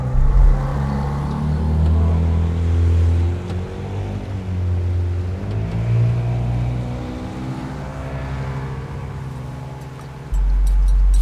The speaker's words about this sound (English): He starts the engine and begins to pilot them towards the open sea.